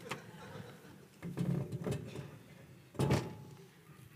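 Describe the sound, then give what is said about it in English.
A few knocks and scrapes as a stool is moved into place to prop a door open, then a louder bump near the end, with faint background noise in between and no talking. “Sorry, right side, your door isn't staying open. Oh, I'll fix it. That's what a stool is for.”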